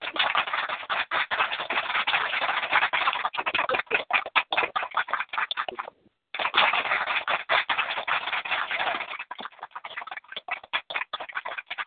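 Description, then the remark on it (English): Rapid hand claps in a dense, crackling stream, breaking off briefly midway, then resuming and gradually thinning into scattered individual claps. No one speaks. “Those were hand claps.”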